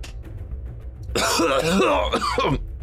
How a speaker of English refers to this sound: Coughing.